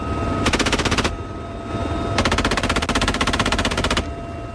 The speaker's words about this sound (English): Out at sea, helicopters would fly out and open fire with rockets and machine guns at targets on an island where, under the scenario, enemy forces were landing.